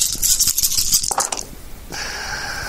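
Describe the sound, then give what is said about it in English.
Two luck dice are rolled in a game, rattling and clattering in a dense burst of sharp clicks for over a second, then settling into quiet, followed by a faint steady high-pitched hum. “7, and then I have these 2 luck dice. I have to keep rolling.”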